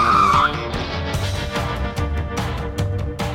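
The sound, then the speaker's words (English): A car's tyres squeal sharply in a high screech at the start, then the engine roars and rumbles loudly as the vehicle speeds off, with bursts of revving and gear changes. “Quick, put your foot on the gas, you sly pumpkin-stealing dog. Yes, and I nicked this car.”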